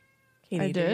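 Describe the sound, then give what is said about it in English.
A cat lets out one loud, drawn-out meow, rising and then falling in pitch after a moment of near silence. “Meow. He has lots of questions.”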